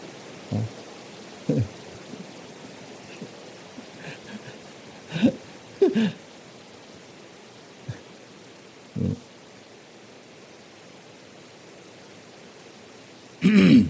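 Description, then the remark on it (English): Steady rain falls in a continuous soft hiss, broken by scattered louder drips and taps, with a heavier splash near the end. No voices. “We're going to do one pointedness meditation on the sound of the rain.”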